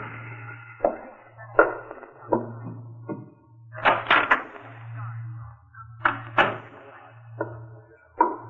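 A door is handled and closed quietly: a series of soft knocks, clicks and thuds spread unevenly over several seconds, with a low steady hum underneath.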